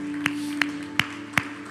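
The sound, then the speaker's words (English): Hands clap unto Jesus at a church service in a steady, evenly spaced rhythm, four sharp claps in under two seconds over a low constant hum, with no voices. “Would you clap your hands unto Jesus?”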